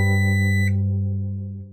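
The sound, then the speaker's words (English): A harsh, rasping buzz from an old-school alarm clock drones steadily at a low pitch with a thick, grating edge, holding loud for over a second before tapering off. No one speaks. “From the harsh buzz of an old-school alarm clock, to the grinding of a blender, to the beep of an oven when it's done preheating.”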